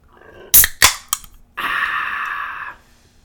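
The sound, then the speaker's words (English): A can of V8 being opened: three sharp, loud metallic clicks as the tab is worked, then a steady bright hiss lasting about a second before it cuts off. No one speaks. “I'm gonna open this can of V8 right here on can.”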